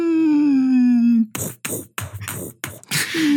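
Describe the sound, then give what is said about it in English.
A voice imitates whale noises: a long, low, moaning tone that slowly slides downward, then a run of breathy, noisy bursts, and the low moan starting again at the end. “It's just soothed, you and the person at the desk who put the whale noises on in the first place, just staring at each other.”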